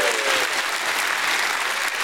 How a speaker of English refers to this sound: I'd ask you to go ahead and give God a hand clap and a shout of praise this morning.